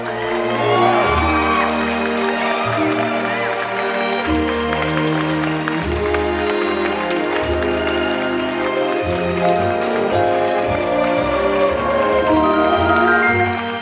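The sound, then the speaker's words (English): A crowd cheers and applauds over loud, upbeat music with a thumping bass line, opening an award show, a steady, energetic roar that holds for about fourteen seconds without anyone speaking. “Let's say, since this is the award show, we should probably start it a little bit, you know, like we'll have music, we'll have applause.”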